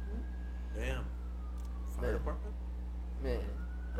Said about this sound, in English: Look, they passing right now. As y'all can hear. Ambulance, baby? Mm. Yeah, for sure. Mm. Sounds like LA.